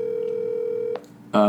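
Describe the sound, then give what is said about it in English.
An outgoing phone call to someone in Chicago rings: a steady electronic ringing tone hums for about a second, then cuts off with a click, followed by a short pause and a louder, buzzy burst of sound. “How come it's not making the ringing sound?”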